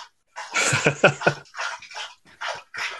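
dog drinking water

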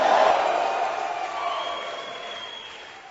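audience clapping and shouting

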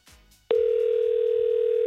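telephone dial tone

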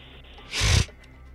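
sniffing

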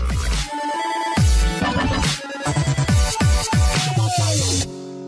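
mobile phone ringtone

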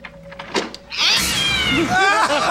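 cat screech

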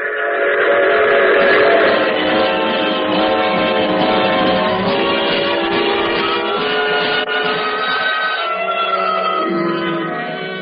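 train running on rails

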